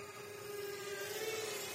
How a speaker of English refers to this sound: So seeing yourself through a drone as it's flying towards you has got to be one of the strangest experiences.